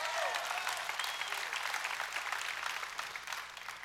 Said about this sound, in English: If you had victory like we got victory, if you're healed like we've been healed, saved like we've been saved, you'd be cheering, you'd be clapping, you'd be shouting too. Come on, somebody give God a big praise.